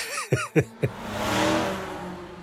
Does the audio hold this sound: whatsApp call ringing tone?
no